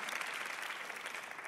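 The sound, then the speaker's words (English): Steady audience applause, a dense wash of many hands clapping at once, fairly loud and even throughout with no voices standing out. “I love this, applause for breaking up.”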